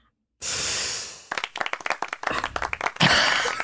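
A short burst of applause: rapid, irregular claps from a few people, fairly loud, following a steady hissing rush of noise at the start and ending in another noisy swell.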